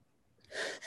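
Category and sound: human body sound, sneeze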